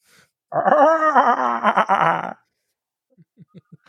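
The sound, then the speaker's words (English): A voice imitates a guttural underwater laugh: one loud, wavering, gurgling growl lasting about two seconds, followed after a pause by a few faint, short breathy puffs. “… just doing that because our submersible is being filled with water, but like he's got the helmet on and everything in the comm channels where it's just fine, but you wanted to make the underwater noise.”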